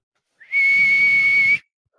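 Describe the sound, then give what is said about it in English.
A single loud, sustained referee whistle blast, a bright steady shrill tone lasting about a second before cutting off abruptly, heard on its own with no talking. “And this is the final whistle.”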